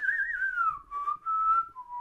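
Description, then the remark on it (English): A person whistles a short Western-style gunslinger tune, a few sustained notes gliding downward in pitch, clear with no talking. “That was my attempt at Clint Eastwood sort of like”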